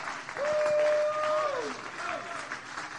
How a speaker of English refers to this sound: Come on, clap your hands and let's praise the Lord together.